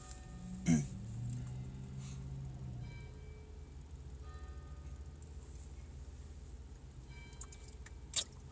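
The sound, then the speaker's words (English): Church bells toll, one deep strike ringing out and fading slowly, then another strike several seconds later, over a steady low background hum. “It's church o'clock.”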